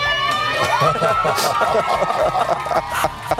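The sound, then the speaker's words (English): A crowd of 400 students and teachers at a school, wearing stick-on mustaches and waving signs, cheering and shouting together on a man's last day at the school: a steady, loud wash of many overlapping voices with brief rising whoops throughout. “All 400 students and teachers wore stick-on mustaches, cheering on, and they waved signs.”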